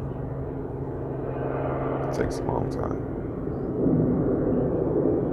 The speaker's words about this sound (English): But yeah, that's a really weird feeling to, I guess I'll wait until the plane continues to pass.